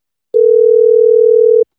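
A telephone dial tone during a prank phone call to a dude ranch: it hums at one unbroken mid pitch for just over a second, starting and stopping abruptly, with nothing else heard.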